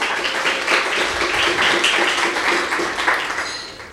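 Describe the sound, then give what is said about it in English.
A crowd applauds the organizers on their first year anniversary for about four seconds, a dense, crackling wash of many hands clapping at once that holds a fairly even level before easing off slightly at the end. “How about a round of applause for the organizers on their first year anniversary?”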